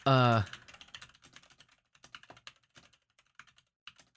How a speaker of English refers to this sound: Yes, I'm typing.